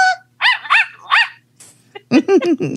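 dog barking and whimpering

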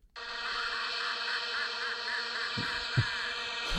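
bee buzzing sound effect

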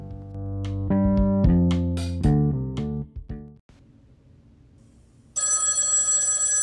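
old telephone bell ringing

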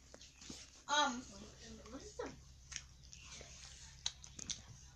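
chewing food

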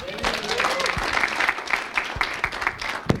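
audience applause and cheering

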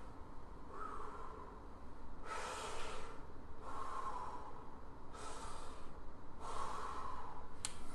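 deep calming breaths

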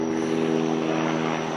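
helicopter flying overhead

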